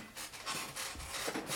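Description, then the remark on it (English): A wooden chair creaks and rubs in a continuous, scratchy strain lasting over a second, fairly quiet, with no voices over it. “oh my god, fucking creaky ass chair.”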